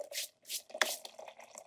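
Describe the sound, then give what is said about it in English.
Water pours into a French press holding coffee powder to make coffee, coming in uneven splashy gushes over a steady gurgling tone, with a brief clink partway through and no voices. “And let's have some coffee. We're going to pour it in.”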